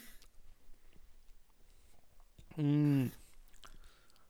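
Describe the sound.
Someone chews food, with soft, irregular wet clicks and smacks running throughout, broken by a brief, loud voiced hum near the middle.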